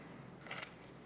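A brief jangle of keys, a quick metallic shake with bright chiming clinks, moderately loud, lasting under a second with no talking.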